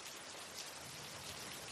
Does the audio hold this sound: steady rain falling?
yes